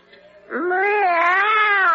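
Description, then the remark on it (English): A single long, drawn-out cat meow begins after a brief quiet moment and holds loud, rising slightly then wavering in a whiny tone until the end. “And this is my friend, the cat. Meow.”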